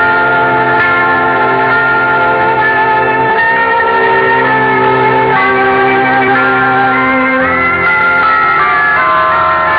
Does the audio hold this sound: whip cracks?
no